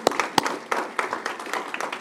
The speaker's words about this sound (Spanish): Gloria, dé un aplauso al Señor.